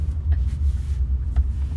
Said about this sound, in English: How are we in traffic? It is exactly 12 o'clock in the morning, and we're in traffic. We are in traffic.